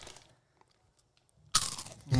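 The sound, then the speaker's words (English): Loud crunching of crispy chicken-flavoured snack chips: a brittle bite after a short quiet pause, followed by more crackly chewing, with no talking. “That's a good crunch.”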